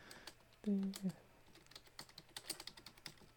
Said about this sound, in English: Oh, you're typing.